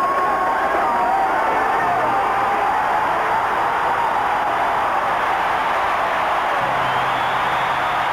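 A large marathon crowd roars and cheers continuously as a runner emerges from a tunnel, a dense wash of shouting and whooping voices that stays loud and steady throughout without any pause.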